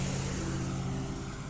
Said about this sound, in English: See, this is nice. Everybody can listen to this and they can hear the cars going by.